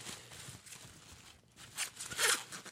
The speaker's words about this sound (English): We got another something wrapped up here in tissue paper.